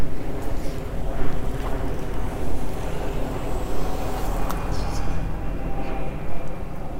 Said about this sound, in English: I'll let the plane go by and let the car go by.